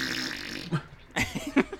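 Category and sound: sound effect, fart noise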